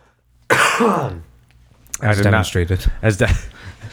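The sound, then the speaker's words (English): A loud, rough throat clearing bursts out, a single harsh cough-like rasp lasting under a second, followed after a short pause by a person talking. “I'm going to cough tonight, so I'm sorry, everybody.”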